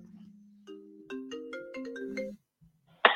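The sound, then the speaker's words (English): A phone ringtone plays a short electronic melody of sustained, stepping notes for about two seconds, clear, then stops, followed by a brief sharp burst of noise. “It actually says on my phone”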